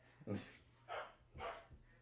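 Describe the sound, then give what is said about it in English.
A dog barks three times in quick succession, short sharp yaps spaced about half a second apart, fairly quiet, with no talking over them. “It picked up Dixie's bark.”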